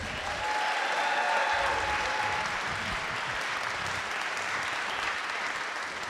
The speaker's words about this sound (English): Did you ever think you'd reach a point in your life where you present a cake to a theater full of people and they applaud you for it?